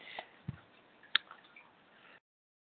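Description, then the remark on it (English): Quiet, steady trickle of running water in a fish tank, with a few soft drips and splashes, like an aquarium filter bubbling away. No one speaks. “The running water of the fish tank is calming.”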